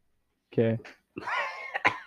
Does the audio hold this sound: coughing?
yes